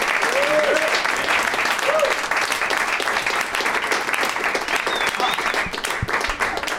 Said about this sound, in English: One more round of applause for Rob Huebel, Julian McCullough, and Dan Telfer.